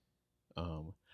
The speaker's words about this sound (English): Excuse me, man, I was really tired today. Probably didn't sleep enough last night. So that's probably where part of all that yawning is coming from.